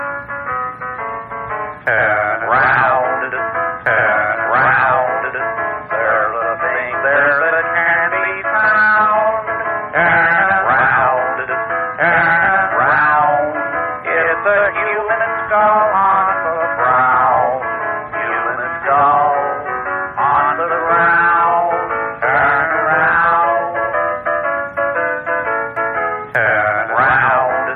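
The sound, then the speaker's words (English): A lo-fi bootleg recording of a song from a compilation plays steadily for the whole stretch, its thin, muffled sound lacking any crisp highs, with a bright, tinkly melody over a busy, continuous backing. “And this is collected on a huge bootleg compilation called …, and this is on ….”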